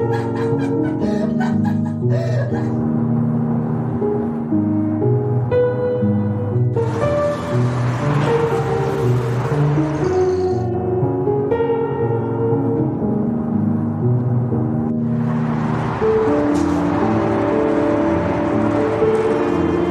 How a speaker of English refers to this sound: Please play the trailer for A Shrink, A Flat, and a Broken Key, and if you feel warm doing it, yay.